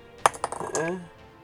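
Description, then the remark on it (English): Dice clatter across a hard tabletop in a quick burst of sharp clicks that settle within half a second, rolled for an attack and landing on a 19, followed by a brief voiced sound. “Yeah, that's a 19 on the dice for a total of 20, 30.”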